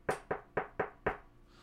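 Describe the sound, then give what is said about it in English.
Five sharp knocks on a door in a quick, even rhythm, each rap crisp, followed by a brief quiet pause with no voices. “So the four of you sit at breakfast, perhaps quietly at first, considering what's happened the previous night and maybe chatting a little bit when there is a distinct knock at the door.”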